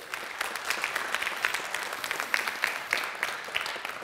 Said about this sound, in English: She'll be popping up right there. Let's welcome her with a clap.